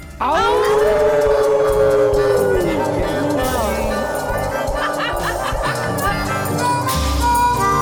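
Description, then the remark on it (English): A group of people on the Moondog Show howl at the Moondog together on a count of three, imitating dogs or wolves, voices rising into a long sustained wail, then breaking into loud, wavering overlapping yips and howls with some laughter. “Okay, y'all, we're going to howl at the Moondog on the count of three.”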